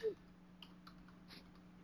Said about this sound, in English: You guys aren't talking while I'm typing. Oh, sorry.